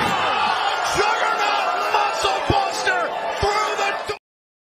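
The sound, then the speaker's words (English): In a knockout standing match, Jordynne Grace hits the Juggernaut Muscle Buster on Masha Slamovich through a door to retain, with several heavy slamming thuds while a large crowd roars and cheers loudly throughout, the noise cutting off abruptly near the end. “The Juggernaut Muscle Buster through the door to retain.”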